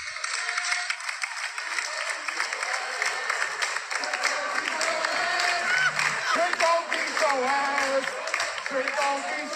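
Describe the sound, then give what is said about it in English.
A large wrestling arena crowd roars and cheers continuously, loud, with many voices merging into a rhythmic, gospel-like chant that swells toward the end. “basically the Trick Williams chant, you know, kind of turned gospel, you know what I'm saying, on NXT. And shout out to the crowd that's there”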